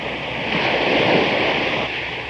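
A single wave surges in with a loud, broad wash of surf, swelling to a peak and then slowly receding into a steady hiss of water. No voices.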